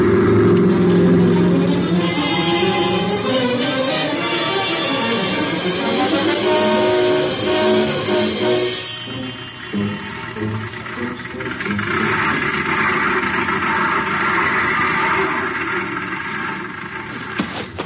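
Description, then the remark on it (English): The engine of an old truck belonging to Bob McDougal rumbles steadily, its pitch rising and falling as it drives up, then shifts to a rougher idle with a hissing wash as it comes to a stop for a fill-up of gas. “Say, isn't this old Bob McDougal's truck?”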